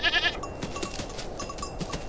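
Goats bleat in a short burst at the start as they are released during a religious ceremony, a wavering nasal cry, followed by scattered clattering and shuffling noises, with no talking.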